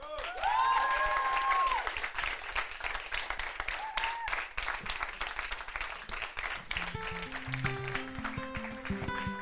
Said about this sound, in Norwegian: Så jeg vil at dere skal gi dem en veldig varm applaus.